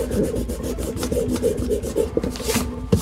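A fresh eraser rubs out pencil on paper in a Manhattan apartment, scrubbing back and forth in quick, steady strokes, a soft rasping friction repeating several times a second, with a couple of sharper scuffs near the end.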